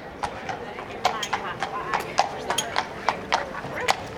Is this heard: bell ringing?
no